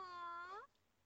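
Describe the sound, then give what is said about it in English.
A single drawn-out meow from a white cat, clear, rising slightly in pitch before cutting off abruptly, followed by quiet background. “cat, Snowball.”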